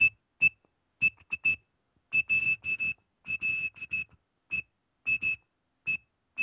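A shrill, steady-pitched toy whistle blown in quick clusters of short pulses separated by brief pauses, like tapping out a sequence of digits, close and fairly loud with no talking.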